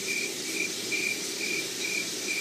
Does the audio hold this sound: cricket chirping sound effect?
yes